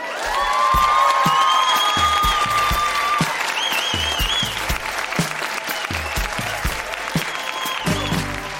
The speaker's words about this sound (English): That has been Grown-Ups Read Things They Wrote as Kids Winnipeg. Huge round of applause for all of the readers. So, so good.